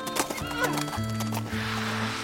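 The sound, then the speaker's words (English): A horse with a rider whinnies loudly while hooves clip-clop in a steady rhythm beneath it. The neigh fills the short moment, with no talking. “Just then, another rider and horse appeared in front of us.”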